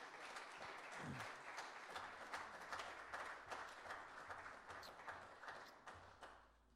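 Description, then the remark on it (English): A crowd applauds steadily, a dense wash of many hands clapping at once that holds for several seconds before tapering off, with a few scattered cheers mixed in. “Can we just give them a big round of applause really quick?”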